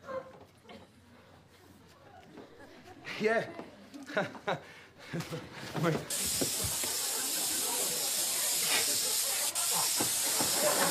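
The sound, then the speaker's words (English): People talk briefly, then an aerosol air freshener can sprays in one long, steady, loud hiss lasting about five seconds, continuing to the end. “It's not working! This is air freshener.”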